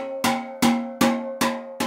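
In a steel drum workshop, a steel drum note is struck five times at an even, steady pace while a man checks it with a sensitive instrument tuner for perfect pitch. Each hit rings out with a bright metallic tone at the same pitch before fading, with no voices.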